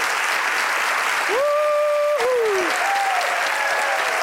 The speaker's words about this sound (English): So I think we need to give them both a round of applause. A round of applause for your heroism.